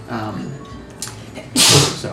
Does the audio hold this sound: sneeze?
yes